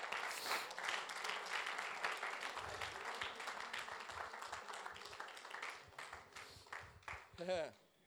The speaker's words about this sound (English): Come on, let's stand together right now. Let's clap our hands unto the Lord and give God some praise right now. Come on, clap your hands to Jesus. Clap your hands to Jesus.